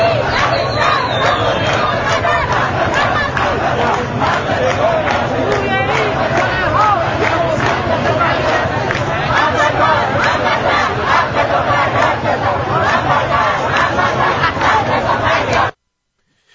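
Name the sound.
protest crowd chanting slogans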